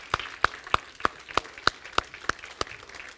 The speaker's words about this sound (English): Now would you give the Lord another big clap offering and thank him? Thank you, Jesus.